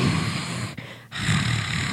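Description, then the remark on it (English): A person imitates the low, breathy hiss-growl of sleepy animals that were being moved, halfway between a house cat's hiss and a lion's growl: a raspy rumbling snarl held for about two seconds with a short catch for breath midway. Fairly loud, with no talking. “So it was like kind of halfway between a house kitty hiss and a lion growl.”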